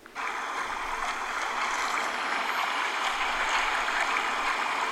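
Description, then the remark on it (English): A washing machine white-noise setting plays a steady, loud whooshing drone that starts almost immediately and holds unbroken to the end, a dense hiss of sloshing water with no voices. “Here's the washing machine real quick.”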